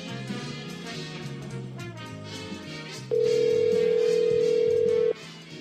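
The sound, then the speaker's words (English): A single loud, steady ringback tone of an outgoing phone call sounds for about two seconds over a low background music bed, then cuts off. “Calling him.”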